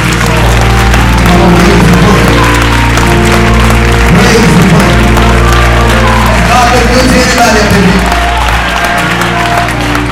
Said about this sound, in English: Clap your hands.